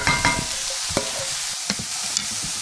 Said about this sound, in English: I'm also going to stir my eggplant as it's going so that it doesn't burn.